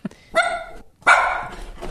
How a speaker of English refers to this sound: I think she not only barked a couple times, but farted.